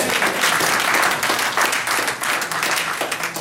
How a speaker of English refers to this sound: Give God a hand clap.